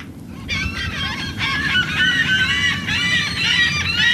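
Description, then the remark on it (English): A dense chorus of seagulls and pelicans calls continuously, many overlapping squawks nearby, over a steady low rumble of wind and water, at the edge of a wide channel flanked by thick mangroves a few miles from an airport, as a team unloads a yellow survey boat from its trailer. “Flocks of pelicans and seagulls hover nearby as the team unloads the yellow survey boat from its trailer.”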